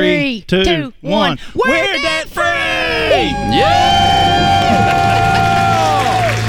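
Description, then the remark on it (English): A few quick spoken calls count down, then several voices of a family from Knoxville, Tennessee, children among them, burst into a loud, sustained celebratory scream and cheer, shouting that they are debt-free, holding for several seconds, bright. “Count it down. Let's hear a debt-free scream.”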